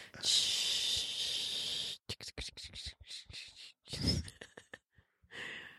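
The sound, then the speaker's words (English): A voice imitates rain: a steady, bright hiss for about two seconds, then a run of short, choppy hissing bursts with brief gaps, ending on another sustained shush. “It's rain. It's just rain.”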